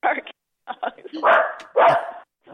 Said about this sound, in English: Ban that dog. That dog is too loud.